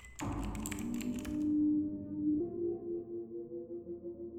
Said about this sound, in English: And typing the last coordinates. There.